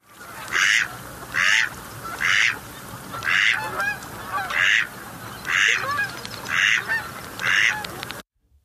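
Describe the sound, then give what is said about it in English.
A male mallard duck gives a steady series of about eight quiet, raspy calls, roughly one per second, over a low background hiss with no talking. “they make like a quieter, raspy noise”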